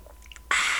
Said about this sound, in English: I want to hear you. Slurp it. ASMR? No, please don't slurp it. Please. Oh, please do. Please do. Oh, no.